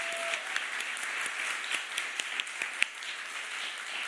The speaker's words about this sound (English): Can we just get another round of applause for Amanda's moving music?